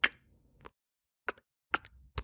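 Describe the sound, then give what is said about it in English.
Fingernails being clipped: about half a dozen sharp, crisp clicks at irregular intervals, a couple in quick pairs, with quiet gaps between and no talking. “No, it's clipping your nails.”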